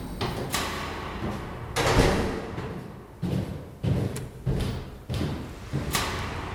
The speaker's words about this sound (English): Just through this here door.